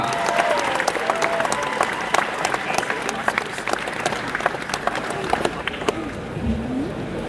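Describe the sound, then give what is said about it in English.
An audience at an event in Birmingham breaks into sustained applause for actor Michael Culver of The Empire Strikes Back, a dense, steady clatter of many hands clapping for several seconds, with scattered cheers and faint voices mixed in beneath it. “Please give a massive round of applause to the brilliant Mr. Michael Culver.”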